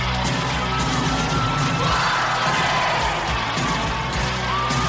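A loud stadium crowd roars and cheers continuously, a dense wash of many voices with yells and a sung chant rising through it, steady throughout without pauses.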